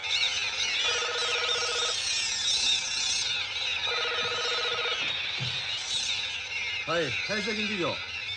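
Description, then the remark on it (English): A telephone in a film scene rings twice in two even, buzzy bursts about a second long, separated by a pause, over a steady background hiss; a short voice is heard near the end as a reporter answers the phone. “And then Maki also, like, walks up and answers the phone like he owns the place now.”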